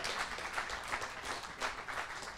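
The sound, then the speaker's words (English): An audience applauds guest speakers steadily, many hands clapping at once into a dense, crackling wash of sound that holds at an even level for a couple of seconds. No one speaks over it. “So please give all of these guys a big round of applause for joining us and giving up their time today.”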